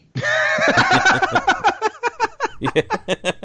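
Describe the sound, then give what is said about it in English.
A horse whinnies loudly, a long wavering neigh that breaks into a quick series of rhythmic, pulsing snorts before fading. “Like, hello, I'm here with this horse.”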